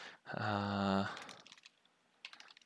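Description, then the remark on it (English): A brief hummed vocal tone gives way to a quick, uneven run of soft clicks from typing text into a document on a computer keyboard, fairly quiet, with a short burst near the end. “I'm just typing this on the document right here.”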